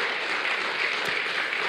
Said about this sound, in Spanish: porque la oración es poderosa, dele fuerte aplauso al Señor, es cierto.